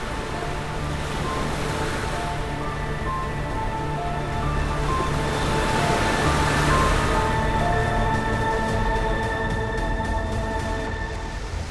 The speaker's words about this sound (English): The sound of the waves starts to crescendo.